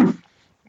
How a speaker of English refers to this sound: Yes. Bless you. Sorry about that. That one came up on him so fast he couldn't mute fast enough.